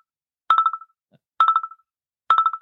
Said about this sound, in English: We have a phone call.